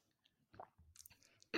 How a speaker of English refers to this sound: I need a sip of water. It's okay.